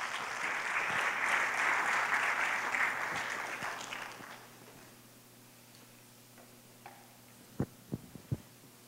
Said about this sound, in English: So if you would, give them a round of applause as they lead us today.